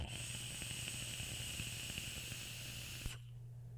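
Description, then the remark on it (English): A steady hiss from an Alexa vaporizer during an inhale with Redback Juice Co e-liquid, peppered with fine crackling pops, running for about three seconds before cutting off abruptly. No one speaks. “Mostly the crackle is what is really like my love affair with this setup.”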